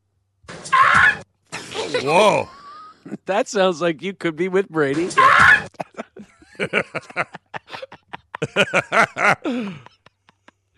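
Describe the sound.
A person imitates a bird call with two loud, squawking bursts a few seconds apart, separated and followed by conversational talk.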